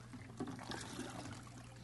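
Water trickles and splashes as it is poured from one cup into another, a soft continuous pour over a low steady hum, fairly quiet and with no voices.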